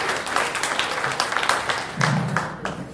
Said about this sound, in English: James Fritz, ladies and gentlemen. Clap your goddamn hands.